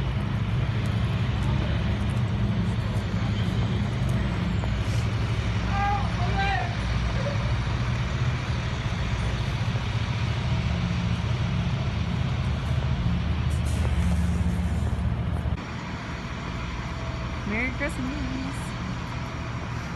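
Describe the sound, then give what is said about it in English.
Many helicopters flying overhead for extra security, heard on a walk to a hangar, make a loud, continuous rotor drone and deep rumble that fills the scene, easing off slightly near the end, with faint higher chirps briefly breaking through. “There's two clips actually, cause I wanted you to see the helicopters, cause they had a lot of helicopters going for extra security as well.”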